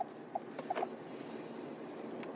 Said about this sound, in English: Drinking my alkaline water.